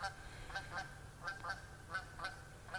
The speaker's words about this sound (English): I'm assuming that's one lone geese up ahead. Oh, there he goes.